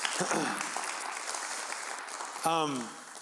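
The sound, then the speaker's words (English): An audience gives God a big hand clap, clapping together in a dense, steady wash of applause lasting several seconds, with a few raised voices calling out over it near the start and again toward the end. “Go ahead and give God a big hand clap for that.”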